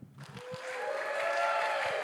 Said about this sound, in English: Good. I was really worried I was gonna have to teach you how to clap, and that was gonna be awkward.